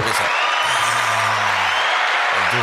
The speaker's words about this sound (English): Clap. Yeah, give me one of those. You need a clap.